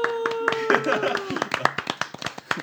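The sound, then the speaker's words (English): A small group of show hosts claps for the audience in a loose, uneven burst of applause lasting a few seconds, fairly loud, with voices calling out over the start of it. “people in the show applaud for the audience.”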